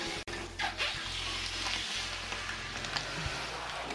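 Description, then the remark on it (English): A 50 kg Kung Fu mattress, vacuum-packed, unrolls and expands after its vacuum bag is cut open, with a steady, crackling hiss like rushing air and rustling plastic, broken by a few soft thumps over a low constant hum. No one speaks. “And it also comes with this card that says it's Kung Fu mattress and it can unroll itself. It was packed in a vacuum bag once the bag is cut open.”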